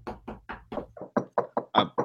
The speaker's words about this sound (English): That's knock on wood. Knock on wood.